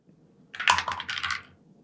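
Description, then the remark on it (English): A six-sided die (D6), rolled during a tabletop game, clatters and tumbles across a hard surface in a quick burst of bright, rattling clicks, then settles on a 5. The sound lasts about a second, with no one speaking. “Can you roll me a D6?”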